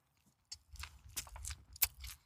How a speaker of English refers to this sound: Him chewing in my ear right now makes me want to run through that fucking wall.